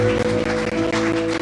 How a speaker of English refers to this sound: And every believer who believes by faith, give God a hand clap of praise.